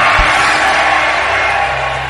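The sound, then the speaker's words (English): A church audience screams and cheers in a dense, continuous, loud roar, with many voices blending into one sustained wall of noise and a brief low thump at the start. “This is a shouting church. This is a screaming church.”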